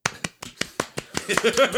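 An applause sound effect played for Karen Civil: a quick, steady run of about ten sharp, crisp claps builds into a denser, noisier burst of applause with a faint whistling tone near the end.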